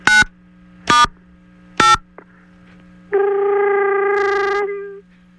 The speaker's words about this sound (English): I'm a phone technician, and I would like you to do me one favor so I could complete this test on the phone. Could you please dial 90 pound for me?